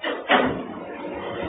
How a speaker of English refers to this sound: Wait. Close the door.